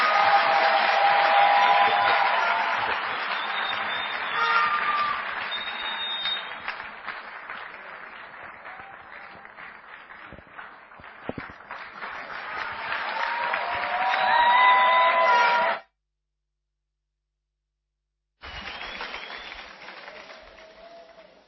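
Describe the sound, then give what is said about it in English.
An audience claps and cheers for Jesus steadily for about fifteen seconds, a dense wash of hands with some raised voices, then stops abruptly; after a brief silence another burst of applause begins. “Your hand clap is very bad.”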